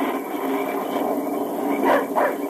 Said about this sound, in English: Keep that dog quiet. He smelled game. I don't care what he smells. Quiet him. Quiet, Dan. Quiet. Hush up. Quiet that dog or I'll quiet him for good.